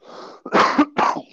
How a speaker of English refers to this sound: Oh. Man, I still got this cough from the flu